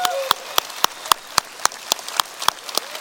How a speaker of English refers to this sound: There's three groups I want to applaud. One are all the military that we celebrated. Can we give them a big hand?